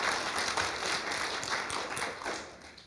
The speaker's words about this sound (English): Like, honestly, can you just give a clap for God?